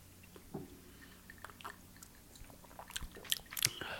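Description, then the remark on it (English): Quiet wet mouth sounds from someone sipping a cocktail: small slurps and liquid clicks, growing into a few sharper sips near the end, with no talking. “Sips.”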